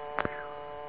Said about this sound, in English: What's that buzzer? That's for you, and that means they've sat down for dinner and Major Cromwell wants to know where the heck is the fruit cocktail.